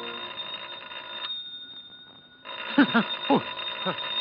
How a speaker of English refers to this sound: It's not the door, it's the phone. Oh, the phone. Yes. Who the devil can that be?